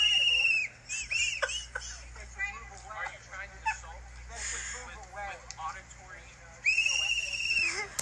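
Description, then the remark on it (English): Piercing, shrill whistle blasts, blown by a man in yellow, ring out loud, one at the start and another near the end, with muffled voices and crowd chatter filling the gap between them. “I'm literally crying from the fucking whistle.”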